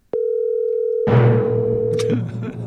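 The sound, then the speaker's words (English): A steady, loud telephone dial tone hums continuously for about two seconds while calling a friend, joined halfway through by rough clattering and rustling noise that carries on after the tone cuts off. “Let me see if I can get him on the phone.”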